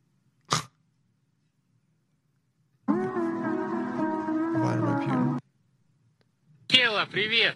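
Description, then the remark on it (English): A wolf growls in one long, steady, rumbling snarl lasting a few seconds. A sharp burst comes just before it, and higher, whiny vocal sounds follow. “Oh, look, here's my wolf.”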